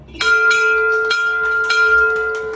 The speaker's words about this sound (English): Oh, yeah! That's my dad ringing the bell at Baylor Scott & White in Round Rock, and they've been amazing, and it's been a roller coaster ride, but as of now, my dad's cancer treatment is, I think it's done